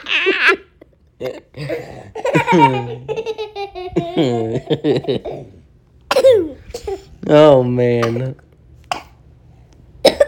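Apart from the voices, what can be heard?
coughing fit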